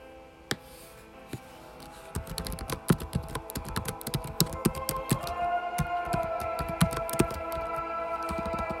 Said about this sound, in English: Let's do a little research. I'm going to do me some little typing to type in here.